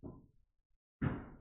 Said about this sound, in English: I'm so sorry in advance. Hammering is going on in the background, so it might pick up on it.